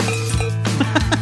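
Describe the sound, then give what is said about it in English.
A cowbell with an internal clapper clinks several times in quick, irregular succession, bright and metallic, over a steady low hum. “Just one of those real, like, not like a real cowbell, not like something with a stick, one with the bell in it, like clink, clink, clink, clink, clink.”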